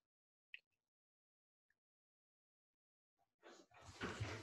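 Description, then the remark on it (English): A front door being unlocked and opened: a sharp click and a faint tick in near silence, then a louder rattling clatter and rush as the door swings open. “Val's home. Hi, Val. Well, she's got to unlock the door first.”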